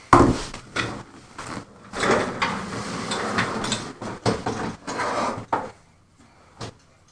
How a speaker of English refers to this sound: Let me swap my chairs. Okay.